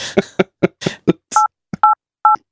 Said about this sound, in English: I think I can count, but it's all tones from a phone.